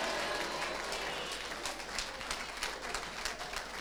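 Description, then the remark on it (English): A crowd claps hands together in a dense, steady patter after a call to clap their hands and shout hallelujah, carrying on for the whole few seconds, moderately soft, with faint voices mixed in among the applause. “Anybody who believe that it can happen, clap your hands and shout hallelujah.”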